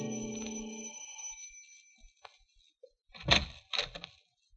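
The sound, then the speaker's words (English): A doorbell chime at an apartment on the east side rings out and slowly fades, followed by a few soft clicks, then two heavier bursts of a door being handled. No voices. “Like the character who's ringing the doorbell of an apartment on the east side.”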